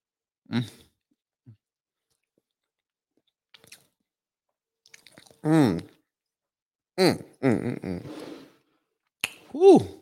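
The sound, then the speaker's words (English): Bites and soft chewing of a vegan muffin, with quiet pauses between, followed by several drawn-out voiced murmurs of enjoyment from the person eating. “This is a vegan muffin right here, honestly. I'm trying to batter. Understand? Oh, let me get into this.”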